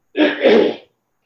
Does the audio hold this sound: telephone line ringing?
no